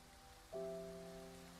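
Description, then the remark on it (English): Steady hiss of falling rain fills the background, and about halfway through a sustained low, organ-like chord swells in and holds over it. No voices. “You see, I want you to imagine for a moment that it's raining in here, right?”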